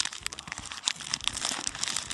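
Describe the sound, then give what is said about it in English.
Paper being unfolded and crinkled, a steady run of crisp rustles and crackles with sharp bright snaps scattered throughout, heard on its own with no talking. “And gather around, all you paper fetishists, here it comes again.”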